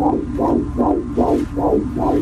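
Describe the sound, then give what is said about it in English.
A fetal heartbeat on an ultrasound monitor: fast, rhythmic whooshing pulses, about two or three per second, over a steady low hum, with no voices. “That's a baby's heartbeat.”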